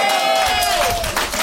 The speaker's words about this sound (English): Are you ready for your next visitor from San Francisco? Come on, clap it up!